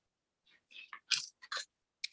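A paper page being turned at a microphone, to the page for 2022, heard as a quick series of crisp, crinkly rustles and crackles over about a second and a half, ending with one sharp flick, with no talking.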